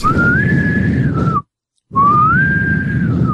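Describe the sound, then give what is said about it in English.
A person whistles two long, loud notes imitating a ship's sailing whistle, each rising in pitch, holding, then dipping at the end, with a short silent pause between them and a low background rumble. “Okay, I need a sailing whistle. Who knows how to do a good sailing whistle?”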